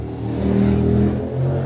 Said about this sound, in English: On a hot, dry summer day, Pajaro's main street is bustling with traffic.